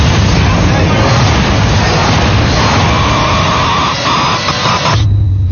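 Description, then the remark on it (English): A plane crash in a movie trailer roars in a loud, continuous wall of rumbling, hissing noise, with a thin whine rising partway through before it drops to a deeper low rumble at the end. “He's on a plane. Plane crash.”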